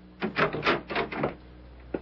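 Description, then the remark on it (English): A quick run of sharp, hard knocks on a door that has just been closed, about five raps close together, followed by a pause and one last single knock. No voices accompany them. “Once again, I looked into those marvelous eyes, and then she turned quickly and closed the door. I rapped sharply.”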